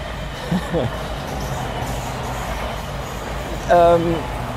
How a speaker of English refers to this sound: Hello, train. Good morning.